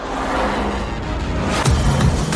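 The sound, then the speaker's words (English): A pre-production pickup truck with skid protection and Multimatic GSSV shocks is driven fast, its engine roaring steadily with broad road and wind noise, the rumble swelling louder about two-thirds through as it drives hard. “this pre-production truck you see behind me. Let's go see what it'll do.”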